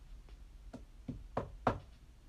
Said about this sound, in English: And I carried it upstairs. And I went to Dashie's room. I knocked on her door.